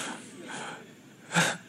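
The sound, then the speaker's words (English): Breathy sniffling of someone crying with emotion: two soft sniffs and shaky breaths, then a sharper, louder sniff near the end, with no talking. “And last week that I was sniffing and I thought I was crying, and I'm really crying right now.”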